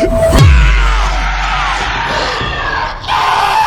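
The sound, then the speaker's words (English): A loud, deep monstrous roar from a monster chomping into a man's face drops low and rumbles on, mixed with his frantic yelling, screaming and gurgling throughout, harsh with no clear pauses. “The lusty, full-throated roar you hear comes from the monster chomping into Frankie's terrified face”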